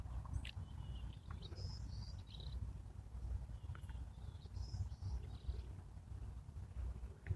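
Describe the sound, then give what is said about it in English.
Two short bursts of high birdsong from a pair of nesting birds, about three seconds apart, sound faintly against a steady low rumble of outdoor background noise, with no one talking. “So nice hearing the bird song.”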